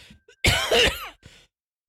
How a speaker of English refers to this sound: Oh no. Oh no. Oh no. Stay 6 feet away from me. Remember to cough into your elbow.